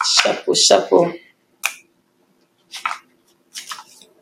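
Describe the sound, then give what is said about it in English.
Papers shuffled in a handful of crisp, scratchy rustling bursts, a longer loud flurry at first, then three short quieter shuffles separated by brief pauses. “Let me shuffle these papers.”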